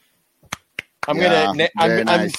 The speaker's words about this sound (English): I'm Nancy Pelosi clapping at the Sun Times and and at Tom Ricketts. That's my sarcastic Nancy Pelosi clap impersonation.